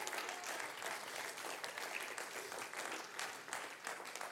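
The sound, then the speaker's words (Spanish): An audience at a sermon claps steadily throughout, a dense, continuous patter of many hands with no voices standing out, holding at an even, fairly loud level before easing slightly near the end. “No me dejes aplaudiendo a esa gente sola, son ya fanáticas mías.”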